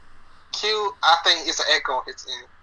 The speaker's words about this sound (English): I think it's an echo.